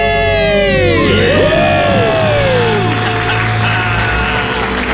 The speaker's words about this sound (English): And the crowd goes wild.